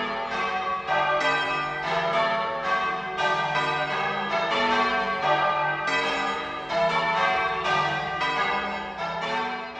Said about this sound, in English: But before we go, here are the church bells ringing for the King. More about the bell ringers next week.